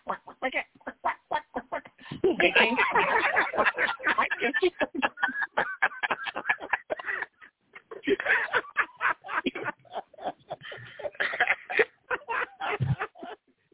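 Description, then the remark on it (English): A voice imitates a duck with loud, rapid nasal quacks in near-continuous bursts. There are brief pauses around two and eight seconds, and the sound fills the whole stretch. “As a matter of fact, Mr. Duck is here.”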